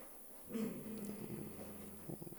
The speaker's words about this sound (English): He's barking at stuff. Quit barking at stuff, dude. You guys hear him growling? He doesn't even know what he's growling at.